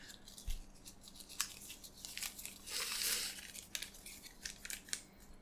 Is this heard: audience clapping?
no